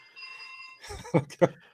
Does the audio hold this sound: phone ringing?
yes